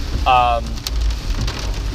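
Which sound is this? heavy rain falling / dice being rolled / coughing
heavy rain falling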